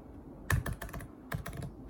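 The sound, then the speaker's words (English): Fast typing on an Apple laptop's butterfly keyboard: two quick bursts of light, flat clicks with a brief pause between them. No voices. “It's a butterfly keyboard from Apple versus the clicky keys of the Logitech G915.”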